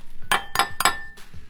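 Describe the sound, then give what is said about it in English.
Three eggs are cracked in steady succession, quick sharp cracks like eggs rapped against a bowl rim, each with a short bright ringing clink, with no talking. “Cracking my eggs.”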